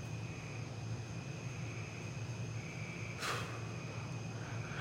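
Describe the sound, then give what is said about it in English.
A steady, low droning hum of giant mosquitoes two to three feet long, outside a motel, holds throughout with a faint whining overtone, broken once near the end by a brief airy whoosh; no voices. “Outside, the hum, like a drone, militaristic.”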